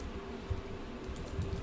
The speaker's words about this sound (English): Oh, you guys are fast at typing. Whiz fingers. I'm terrible at typing.